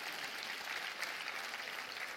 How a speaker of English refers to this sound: Give a hand clap for somebody wearing good shoes today.